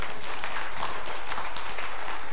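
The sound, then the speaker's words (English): An audience claps together in a steady, dense burst of applause, many hands producing a bright, crackling wash of sound with no voices over it. “Absolutely clap your hands for that.”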